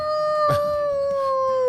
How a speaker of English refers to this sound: Sounds more like a wolf.